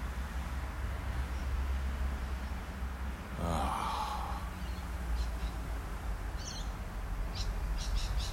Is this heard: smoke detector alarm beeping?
no